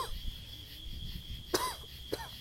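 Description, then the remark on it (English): Two short coughs, the first sharper and slightly longer, the second following about half a second later, over a steady high-pitched whine and low background rumble. “Nah, I've already had a cough.”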